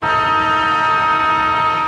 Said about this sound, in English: And then you're going to hear a siren sound. And then we'll be at the AFLX.